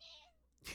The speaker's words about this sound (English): Kitty. I'm going to make you squeak again.